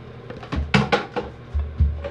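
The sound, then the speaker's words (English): A soap bottle is knocked over: a few quick hollow knocks and clatters, like a plastic bottle tipping over and bumping against a hard surface, with a low rumble underneath and no talking. “Ignore the soap bottle being knocked over.”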